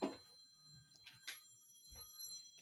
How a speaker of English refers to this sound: Sorry, my phone's ringing.